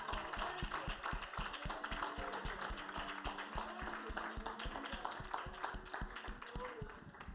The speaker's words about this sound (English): Come on, let's give Jesus Christ a hand clap. Let's give him a little praise. Amen.